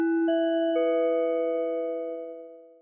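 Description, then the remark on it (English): A clock chimes midnight with three quick overlapping bell tones that blend into one sustained, resonant note, slowly fading away. It is clear, with no voices. “Did you hear that? Kaya asked right when the clock struck midnight.”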